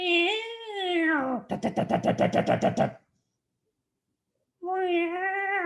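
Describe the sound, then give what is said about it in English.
An electronic in-car rodent deterrent running off 12 volts, stuck to the wall of a storage unit to chase away mice, blares loud, wavering cat-like yowls, then a rapid burst of about a dozen harsh stuttering pulses, a pause of silence, and another rising yowl. “I had an in-car rodent deterrent mechanism, because it has to run off of 12 volt.”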